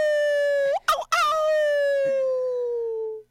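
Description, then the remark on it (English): A person in a radio studio imitates a howl with a loud, sustained, rich-toned wail that breaks briefly into a wavering yelp, then slides slowly downward in pitch before trailing off. “That was me. Howling.”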